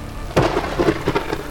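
A thunderstorm: a sharp crack of thunder breaks over steady rain hiss, followed by a few rumbling bursts, with no voices.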